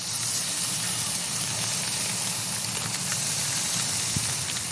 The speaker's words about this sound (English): Ah, the sizzle of a barbecue.